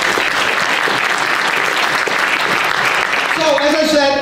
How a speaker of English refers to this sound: So round of applause for the Atlantis.